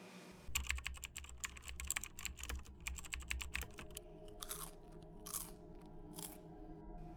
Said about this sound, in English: You hear these sounds, right? The fingers tapping on keys and the sound of chips being eaten?